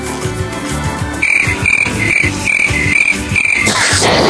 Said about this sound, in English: Yeah. No, that's the crickets laughing, though. They enjoyed it, so I have an audience.